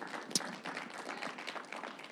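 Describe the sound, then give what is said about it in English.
A crowd claps together in a dense, continuous patter of many hands, steady and moderately loud, with one sharper, louder clap standing out near the start, during a short intermission. “All right, let's clap.”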